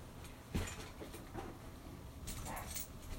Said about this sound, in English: Oh, this fucking dog's barking. Sweet. Fucking asshole dog. What a fucking asshole. God, he sucks. He's so fucking dumb, man.